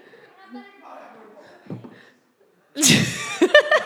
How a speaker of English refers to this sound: Now he's just slapping him on the back of the head.